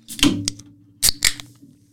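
Two quick rounds of sharp metallic clicks, each followed by a short hiss, as beer cans are cracked open and fizz, over a low steady hum with no talking.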